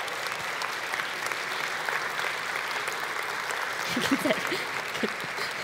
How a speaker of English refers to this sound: Can you just stand if you went on any of those trips this summer? Just go ahead and stand anywhere in the room. Yeah, can we give these kids a round of applause?